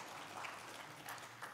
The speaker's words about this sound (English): If you had an involvement with VBS this week, just kind of raise your hand. Some of our VBS workers? Yeah, let's have a round of applause for these workers here. Yeah.